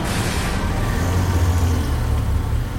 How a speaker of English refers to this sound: every city sounds the same after a while, doesn't it? The constant hum of traffic, distant sirens. They were my lullabies, my unwanted companions in solitude.